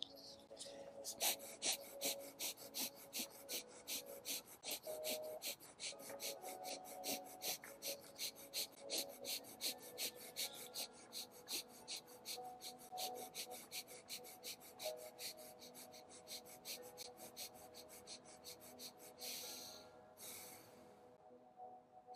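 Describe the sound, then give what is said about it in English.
Rapid, forceful breaths pumped in a steady rhythm as a breathing exercise, fairly loud, continuing evenly for about twenty seconds with no talking. “I just want to show you how my breath is looking like.”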